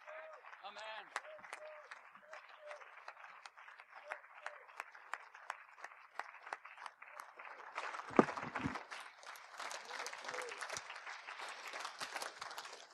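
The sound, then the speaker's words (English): An audience in Northampton breaks into sustained applause to heaven, many hands clapping in a dense, continuous patter that swells louder and thicker partway through, with faint voices mixed in beneath it. “And if you believe that, and if your heart is singing, let's give applause to heaven for heaven's great gift.”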